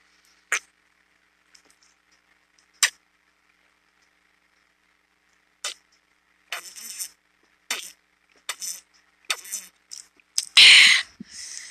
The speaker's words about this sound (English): I'm sorry, I was thirsty. I was chugging some water.